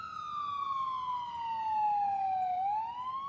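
An ambulance siren wails steadily, its tone sliding slowly downward and then turning back up near the end, loud over a low rumble of road noise.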